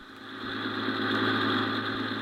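A free sightseeing bus on a Sunday city tour idles with a steady, low rumbling drone and a faint mechanical vibration, holding an even, moderate loudness throughout with no voices.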